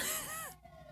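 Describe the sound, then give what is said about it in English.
A siren wails outside, its pitch gliding down in a sweeping arc before cutting off about halfway through, leaving quiet background noise. No one is talking. “Sirens, dude.”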